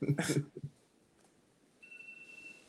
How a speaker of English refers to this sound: Turn that alarm off. It's Wake up.